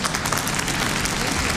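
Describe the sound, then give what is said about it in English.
Dense, continuous applause from a stadium crowd, live, after the first home run of a home run event, steady and fairly loud throughout. “This is from the stadium. Yeah, that's live. They're still there clapping right now.”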